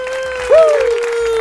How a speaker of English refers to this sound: No, wait, let me do that again because that was mild clapping. Clap better!